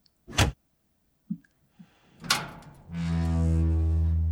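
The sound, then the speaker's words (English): A sharp mechanical clunk, a couple of soft knocks and another latch-like thud, then a steady, loud electric motor hum that drones on as a door with a disengaged electronic lock powers open after its handle, left of the doorframe, is pulled. “The electronic lock should already be disengaged, so merely pull the handle to the left of the doorframe to trigger the opening process.”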